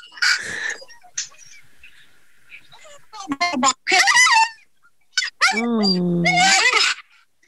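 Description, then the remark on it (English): An excited dog inside a car lets out a series of high, shrill squeals and yelps, rising and wavering in pitch, with short gaps between loud bursts. “And this is the noise that's happening in the car right now.”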